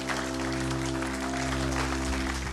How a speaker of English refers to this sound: We want to just give you a round of applause and say thank you for coming.